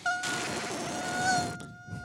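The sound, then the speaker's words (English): A voice imitates a fly's buzzing: a steady, high, droning buzz lasting just over a second, fairly loud, then cutting off into quiet rustling. “And then the fly was like, and then it would just like, no, it should be like.”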